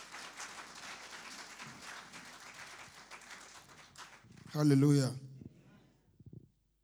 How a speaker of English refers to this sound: And I thank the congregation also. Hallelujah. I wanted to clap for Jesus.